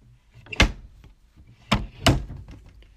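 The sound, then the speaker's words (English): A door is pushed shut behind people just let in, with a solid thunk, followed by two more quick clunks of the latch and frame settling, with no voices. “And I let them in and shut the door behind them.”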